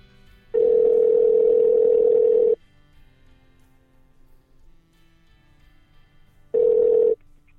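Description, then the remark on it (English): An outgoing phone call's ringback tone while calling the speaker's mother: a steady electronic tone lasting about two seconds, a pause of several seconds, then the same tone starting again, clear with no talking. “Okay, it's ringing.”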